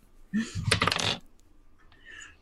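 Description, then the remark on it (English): A quick burst of hard plastic clattering as two dice, rolled for a persuasion check, tumble and rattle across a table for about a second before settling, then near silence with a faint rustle. “And with my persuasion, okay, the first dice is a 16 all told, and the second dice is an 18 all told.”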